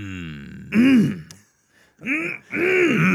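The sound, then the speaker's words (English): Three rough, loud throat-clearing bursts, the first separated by a short pause and the last two coming in quick succession, with a brief hum before them. “I had to legitimately clear my throat on that one.”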